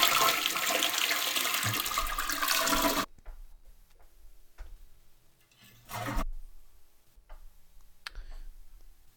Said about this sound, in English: We get the last toilet flush. Let's see what we can do with this one, guys.